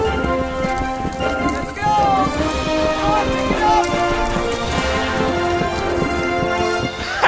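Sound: horses galloping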